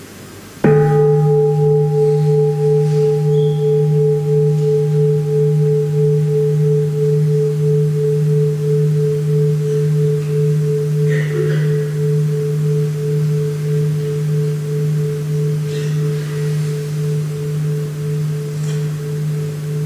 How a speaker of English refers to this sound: can you invite the bell for us to breathe?